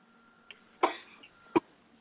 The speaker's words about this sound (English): I'm sorry, I have a cough. That's all right. Get it out. Get it out of your system.